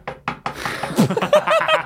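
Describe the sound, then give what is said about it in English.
Three firm, evenly spaced knocks on a door, loud, followed by muffled rustling and a brief voice-like sound. “You already know who's at the door. Answer it.”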